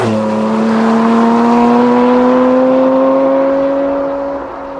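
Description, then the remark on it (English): A Porsche Cayman GT4 RS engine pulls hard and steadily on a road drive near Nuremberg, Germany, its loud, buzzing drone climbing gradually in pitch for several seconds before easing off slightly at the end. No one speaks. “And we are in the latest and greatest Porsche, the Cayman GT4 RS.”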